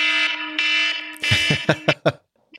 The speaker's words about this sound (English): So when Acme calls me, this is what my ringtone sound. My ringtone sounds like.